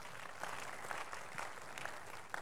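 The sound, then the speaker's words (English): An audience applauds steadily during a religious testimony, many hands clapping at once in a dense, continuous wash of sound without pause. “If you are clapping, it can be better.”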